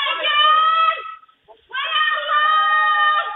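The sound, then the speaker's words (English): Two long, high-pitched screams, loud and strained, split by a short pause, caught by a Ring doorbell camera across the street from a fire in the Castle Hill section of the Bronx. The sound is tinny and band-limited. “Those are the gut-wrenching screams caught by a Ring doorbell camera from across the street.”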